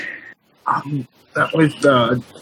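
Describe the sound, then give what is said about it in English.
A person imitates a whimpering animal: a short nasal whine, then several strained, rising vocal whimpers in quick succession, fairly loud. “I suggest whimpering.”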